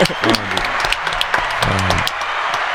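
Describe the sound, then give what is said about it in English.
A burst of rapid hand clapping, steady sharp claps for about three seconds, with voices talking or whooping over the top. “But nah, we could just clap, bro.”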